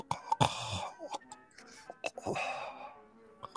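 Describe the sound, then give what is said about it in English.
A voice imitates a gurgling snore and heavy breathing, meant as someone sleeping inside a tent: a string of rough, raspy breaths and throaty bursts at an uneven rhythm, moderately loud, with no words spoken. “You do hear the sound of heavy breathing, verging on snoring, perhaps from within.”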